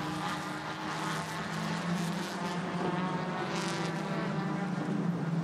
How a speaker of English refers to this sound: Battle at the West Bend at the moment. The Rockwell Auto Development car going a lap back to two of the Hyundais. That was the number 15 car, driven by Eric Rockwell. And Rockwell dives into the pit lane as the two cars go across the line.